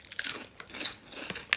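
Salt and shake crisps, a plain one without salt, being crunched: a handful of bright, crackly bites come in irregular bursts, with sharper snaps toward the end. Nobody speaks.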